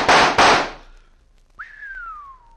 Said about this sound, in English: Smashed the 3 of them before they hit the ground. By thunder, that's what I call shooting.